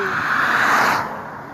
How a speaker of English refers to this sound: Okay, a car is coming. Let me get to the puddle. Let me get down some. I don't want to get ran over. Go, go, go.